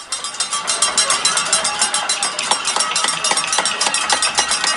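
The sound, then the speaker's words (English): Many people on balconies and at windows in the West End bang pots and pans for the 7 p.m. cheer, producing a dense, continuous clatter of bright metallic clangs and rapid irregular strikes, loud and steady throughout, with a wash of cheering, whistling crowd noise underneath. “People off their balconies, out their windows, banging pots and pans.”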